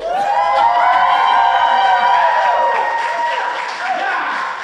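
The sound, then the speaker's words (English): A loud, sustained burst of audience applause mixed with crowd cheering and shouting voices at the live show Jackman Radio Live at the Jaffrey Legion, holding steady for several seconds before easing slightly near the end. “I like that applause. Let me hear that applause again.”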